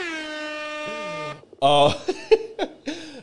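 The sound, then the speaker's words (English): A blaring air horn sound effect holds one brassy, buzzing tone for over a second, then gives way to loud, choppy bursts of voices shouting over each other. “Hit Bonfire Radio with the air horns.”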